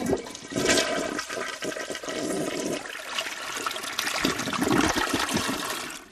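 A toilet flushes with a loud, steady rush of water that churns and gurgles for several seconds, swelling slightly toward the end before starting to drain away.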